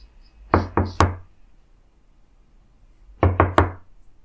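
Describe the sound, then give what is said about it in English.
Two sets of three firm knocks on a wooden door, distinct, separated by a pause of about two seconds, with no voices. “You can always knock on the door.”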